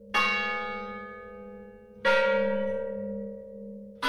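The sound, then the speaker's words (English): A large bell of Mission San Juan Bautista tolls three times at a slow, steady pace, each strike ringing out loud and rich with a long, humming decay that overlaps the next. No voices are present. “For the song of Ascension's death, Joseph Weil and Boone made the first recording of the bells of Mission San Juan Bautista and arranged them for a chorus.”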